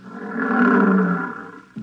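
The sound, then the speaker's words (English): Illusory lions about 15 feet away roar in a long, deep, rumbling bellow that swells to full strength and slowly tapers off, with another loud roar breaking in just at the end. No voices are heard. “Oh, here come the lions.”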